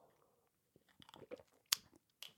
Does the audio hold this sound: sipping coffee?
yes